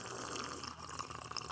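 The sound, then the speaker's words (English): A short sip of LaCroix sparkling water from a long, thin can: a steady, fizzy crackle of bubbles with soft liquid slurping underneath and a low hum, fairly quiet and with no talking. “That sounds like a delicious sip right there.”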